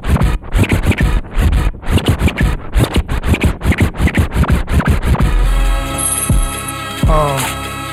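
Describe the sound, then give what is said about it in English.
Rapid, rhythmic turntable scratching over a beat, with sharp repeated bursts for about five seconds before settling into sustained musical tones with a rising sweep near the end. “Shout out to the DJ on the ones and twos.”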